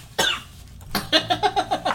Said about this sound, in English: And then he wants to provoke laughter, which provokes cough.